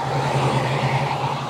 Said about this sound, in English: and cars are going in and out of each other, not overtaking sensibly, going fast along the road here recreationally rather than going anywhere, I don't think. Using it as a bit of a promenade for cars.